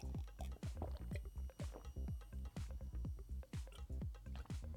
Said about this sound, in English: Let's get the lemon into the water. Just because it's Saturday night does not mean we can't put the lemon into the water. Bang. Look at that.